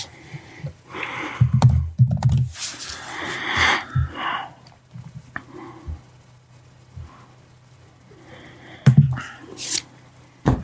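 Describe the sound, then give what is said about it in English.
Rapid clattering of computer keyboard keys being typed furiously in uneven bursts, with a few heavier thumps and breathy, wheezy noises mixed in, then quieter stretches before another flurry near the end. “Spencer is furiously typing right now.”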